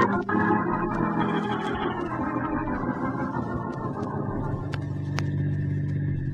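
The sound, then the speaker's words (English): A car engine hums steadily, its pitch gradually dropping as the vehicle slows and comes to a stop outside a bank, with no voices over it. “We'll wait here in the car before we go in”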